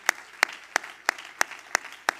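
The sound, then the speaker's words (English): An audience claps hands to the Lord in a steady, unison rhythm, seven sharp, bright claps evenly spaced about a third of a second apart, with no talking. “Everybody clap your hand to the Lord tonight.”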